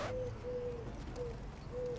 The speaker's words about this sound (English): Only when seen in its ideal habitat can we truly appreciate this king among birds. Behold the noble pigeon.